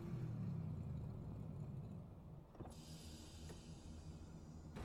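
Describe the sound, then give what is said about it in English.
Engines revving in the intro of a music video: a deep, rumbling drone, strongest at the start, then a steady low growl with a brief surge midway and a hissing wash layered over the second half. No one speaks. “I hear engines revving.”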